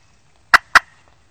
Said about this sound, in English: Was that a full gobble or a jake, you